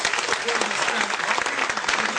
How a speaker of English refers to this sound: It was good to see the young people here giving it all. Shall we give them an applause? These young guys were great.